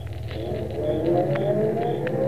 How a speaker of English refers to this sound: What was that? What was what? That car. Somebody drive up?